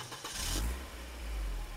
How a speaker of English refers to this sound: I'm in my rental car, and I'm heading back to the airport.